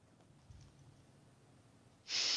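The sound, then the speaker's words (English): A single sharp sniff of air, as the character Rain takes a sniff, breaks in after a couple of seconds of near silence, loud and breathy, cut off at the very end. “Rain's gonna take a sniff, go through his pockets, and then just look up, shudder, and be like, smells like civilization.”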